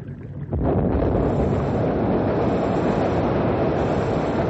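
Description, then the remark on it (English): A sudden, loud blast erupts after a brief quiet moment, then a heavy, continuous roaring rumble carries on without letup, as explosives blow up an ice jam on a river, sending chunks of ice flying. “We're all set now to blow up the jam.”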